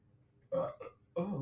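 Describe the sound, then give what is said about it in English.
A loud burp erupts in a couple of throaty bursts with a brief gap between them, standing alone against a quiet background. “There's my weekly burp.”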